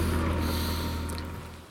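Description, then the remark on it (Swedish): A busy, fairly large boat club in Tyresö on a Saturday in May during spring boat launching: a steady, low engine rumble under outdoor background noise, with a few faint high chirps near the end. “Det är sjösättning på gång, det är full fart.”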